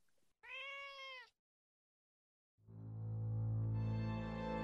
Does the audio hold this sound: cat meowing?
yes